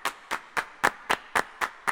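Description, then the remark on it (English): Eight crisp hand claps, made by a person clapping in front of a microphone, land in a steady, evenly spaced rhythm, about four per second. They are bright, each trailing a short tail of added artificial reverb, with no voices. “These are claps. That's just me clapping a bunch in front of a microphone.”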